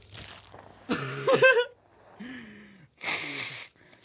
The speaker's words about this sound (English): Oh, the ASMR on the nose blow.